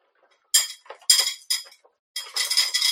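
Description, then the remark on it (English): Dry chocolate and peanut butter cereal pours into a bowl in several bursts. It makes a bright, rattling clatter of small pieces, with brief pauses between pours and a longer final stream. “All right, poured some in a bowl.”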